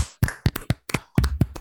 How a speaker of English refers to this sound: And as we do at the end of every single bracket, we are going to clap it out.